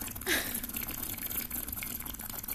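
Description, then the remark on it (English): Liquid and ice slosh around in a cup, a brief splashy surge near the start followed by steady swishing and faint clinking of the ice. “I don't know if my fucking ice gave it away that I used my cup for that sound, and I almost choked.”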